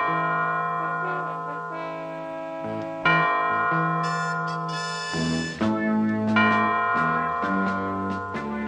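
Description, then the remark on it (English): A clock's bells strike twelve noon in a slow series of ringing, overlapping tones that sustain and decay, loud, with no voices. “You see? 12 o'clock noon, and what's happened? Nothing.”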